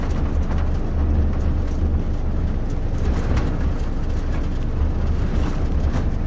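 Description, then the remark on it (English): A motorcycle engine roars loudly and steadily the whole time, a heavy low rumble with a rough, noisy edge and no real rise or fade. No one speaks. “where'd that motorcycle come from? It's weird, that wasn't here before.”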